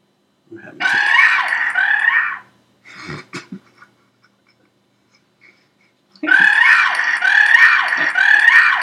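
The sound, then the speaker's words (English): A UNC Tar Heel basketball fan at a game against the Yellow Jackets lets out shrill, warbling bird-like shrieks, two long loud bursts separated by a short gap holding a few brief, choppy sounds. The voice sounds much like a squawking bird or fowl. “That's a UNC basketball fan.”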